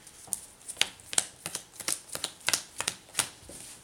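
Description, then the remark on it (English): Game tokens are shuffled like a deck of cards, producing a quick series of about a dozen crisp, bright snapping slaps in an uneven rhythm, with no voices over them. “I do love that, like, good slap, snap.”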